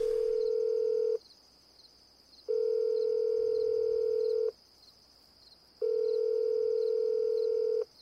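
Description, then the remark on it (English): An outgoing call's ringback tone: three steady electronic tone bursts of about a second each, separated by short silences, with no one speaking. “please answer your phone.”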